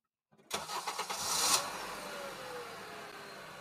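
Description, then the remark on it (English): A car engine cranks with a few quick stuttering bursts, catches with a loud rising roar, then settles into a steady idle as the car sets off on a road trip toward Colorado, with no voices. “As we left the protest, I got back in the car, and we continued on our way to Colorado.”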